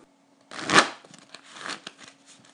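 A deck of playing cards is riffle-shuffled: a loud fluttering burst, then a second softer riffle and a few light card rattles, over a faint steady hum.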